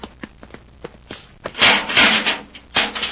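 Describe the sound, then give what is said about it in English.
The wooden door of a study opens: a few sharp clicks and knocks of the latch, then a long scraping, rubbing creak as it swings, and one last shorter rasp. “Open the door, Glazer.”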